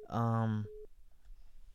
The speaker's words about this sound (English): Yep. I got people over here bugging me out right now. The phones are blowing up for you. The phones are blowing up for you.